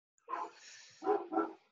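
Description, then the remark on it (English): A female dog barks three times, a first bark trailing into a rough, drawn-out growl before two quick, sharp barks follow in succession. No talking over it. “That's weird, dog is barking as much as she is.”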